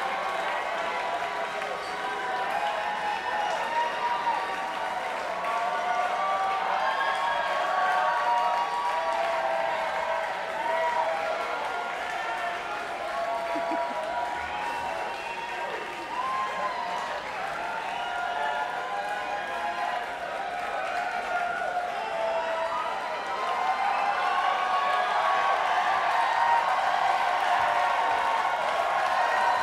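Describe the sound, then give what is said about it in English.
A large crowd roars steadily for the full stretch, with applause, cheering and a dense wash of overlapping voices, loud and unbroken from start to finish. “And now a couple with sort of ET heads tossing things into the crowds.”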